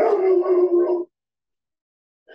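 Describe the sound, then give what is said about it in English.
A dog lets out one loud, drawn-out bark, held for about a second before cutting off into silence. “Whoa, big barks.”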